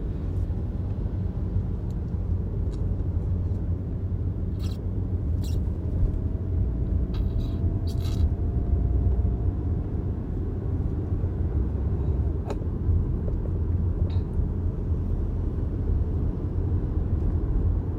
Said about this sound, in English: I'm just realizing, like, I've been starting my day so late, which I hate, but now I'm in traffic. And I didn't even take in this is 3 p.m. traffic right now. Disgusting.